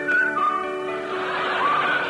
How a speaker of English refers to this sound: But on the fourth day, they heard the wind whistling in the rigging.